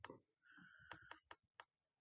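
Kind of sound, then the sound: machine, computer mouse clicking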